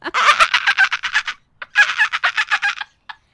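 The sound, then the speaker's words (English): Someone imitates dolphin chatter with two fast bursts of high, warbling clicks separated by a short pause, then one brief final squeak. “I just wanted to see you do your dolphin impression again.”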